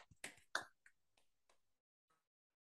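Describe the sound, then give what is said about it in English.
A speaker makes a quick run of sharp hand claps, a few in rapid succession and then sparser, softer ones trailing off, dry with no talking, imitating how a singer-songwriter claps a lot. “She does clap a lot. She just sits and goes.”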